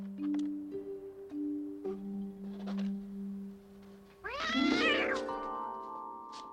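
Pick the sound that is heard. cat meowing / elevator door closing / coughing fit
cat meowing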